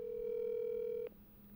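A single steady electronic ringback tone from an outgoing phone call, clear, holding for about a second before cutting off abruptly into quiet line hiss. No voices.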